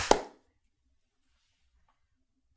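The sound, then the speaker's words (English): A single sharp hand clap, made by people trying to clap together over a call, rings out and fades quickly, followed by a long silence before another clap begins right at the end. No voices are heard. “I clapped before I heard any of y'all my clap.”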